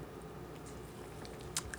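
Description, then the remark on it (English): Fizzing of a carbonated cherry Pepsi, with faint crackling bubbles and a few sharper pops near the end, heard alone without talking. “You can hear those freaking bubbles.”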